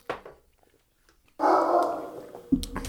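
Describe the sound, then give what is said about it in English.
A dog, Porter the Barker, barks loudly: one long, drawn-out bark after a near-silent pause, then a second, sharper bark right after it. “Porter the Barker there, making his first appearance of the night.”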